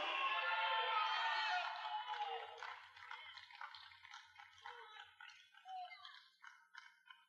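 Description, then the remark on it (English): An audience at a church service shouts 'hallelujah' together, a loud surge of many overlapping voices that thins over several seconds into scattered individual cries and murmurs. “Can somebody give him some shouts of hallelujah?”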